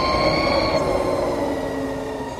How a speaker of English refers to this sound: That's a Harley-Davidson electric motorcycle